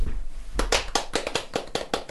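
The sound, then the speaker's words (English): A short burst of clapping in praise of a plantable album sleeve that grows flowers: around eight sharp, evenly spaced claps in quick succession, loud and bright with no voices over them. “That, I think you'll find, ladies and gentlemen, deserves a standing applause.”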